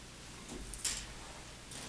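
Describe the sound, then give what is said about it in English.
A clock ticks quietly, a few soft, evenly spaced clicks with one crisper tick standing out, and no voices. “The clock is still going strong.”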